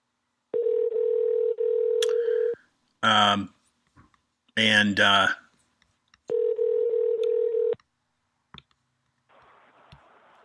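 A phone line with a steady electronic tone, interrupted by two bursts of dialing beeps, then the tone returning before a few faint clicks and quiet line noise, as a show host calls in a guest.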